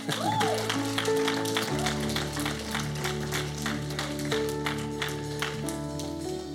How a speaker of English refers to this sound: You know, we had 565 people here last Sunday with the Christmas Spectacular, with over 30 responses to Jesus. So that deserves a clap right there.